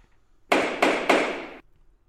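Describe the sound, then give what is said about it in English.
A gavel bangs down on a table three times in quick succession, each heavy knock leaving a bright, noisy ring that runs into the next before cutting off. Fairly loud, with no voices. “As the Emperor's gavel slammed down on the table”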